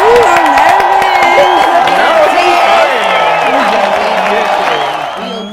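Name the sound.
applause and cheering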